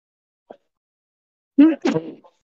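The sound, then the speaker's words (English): A single sneeze: a brief voiced 'ah' rising into a sharp, breathy burst, preceded by a faint quick intake of breath. It is fairly loud and stands alone, with no talking. “Bless you.”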